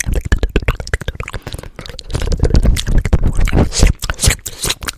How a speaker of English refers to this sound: Do you want a salt crystal? It's nice and crunchy. They don't taste good. I lick them more.